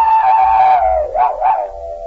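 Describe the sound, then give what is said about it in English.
A man imitates a hound's howl on the Jell-O radio program on the National Broadcasting Company: one long, loud, wavering cry that slowly drops in pitch, then rises and breaks into a couple of quavering yodels before trailing off. “You want to howl now?”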